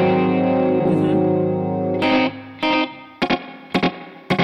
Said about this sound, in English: This is very chorus like. So it's duplicating and detuning it. So it's literally chorusing.